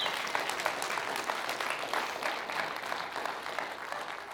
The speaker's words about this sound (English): Now you can cheer again.